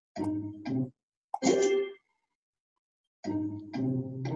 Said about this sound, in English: And that little sound that you heard was, I guess, the button lighting up, so it did register.